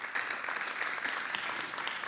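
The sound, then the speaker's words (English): A crowd applauds with steady, dense clapping that holds at an even level for about two seconds, with no voices standing out. “Clap, that's good.”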